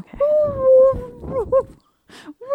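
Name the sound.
voice imitating whale noises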